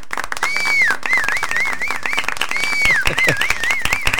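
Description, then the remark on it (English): Sustained audience applause for a caller who saved $95,000 in retirement accounts in 3 years: a dense, steady patter of many hands clapping, with shrill, wavering whistles rising over it twice. No one speaks. “We haven't done a round of applause or this is phenomenal.”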